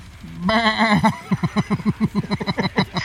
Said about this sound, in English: This is Doorknob the Goat.